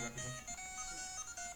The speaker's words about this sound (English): That's my ringtone. Did someone turn it off?